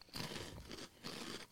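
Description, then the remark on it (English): Loud crunching of a crisp corn snack being chewed, two dense bursts of brittle crackling with a short pause between them, no talking. “Crunchy.”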